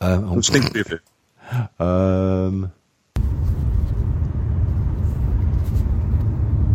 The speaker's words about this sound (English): In fact, one of them's that bloody one that you sent in, that recording of you being on a bus for fucking half an hour or something.